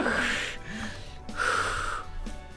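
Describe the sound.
A person imitates snoring for a character put to sleep by a spell in a game, with two drawn-out, rasping snore sounds made by voice, fairly loud, each followed by a short breathy pause.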